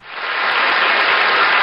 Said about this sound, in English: Thank you. No, no, please. No, I'll have none of that. No applause, please. No applause.